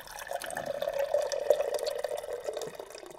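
Water bubbling and dripping continuously, like a water cooler glugging, with a steady liquid gurgle and scattered drips at moderate volume, no voices.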